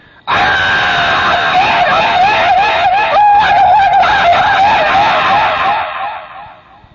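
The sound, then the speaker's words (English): A voice imitates a man's long, loud yell from inside a house, one continuous wavering cry that holds for about six seconds before trailing off, with no talking around it. “And the people all around, you know, the next house, once in a while, they'd hear him yell. They'd hear it come out.”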